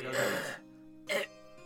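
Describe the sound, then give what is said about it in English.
A raspy, drawn-out dying cough, one long strained hack followed by a short weaker cough after a pause. It's fairly loud, with no talking. “dying cough. My God, he's alive!”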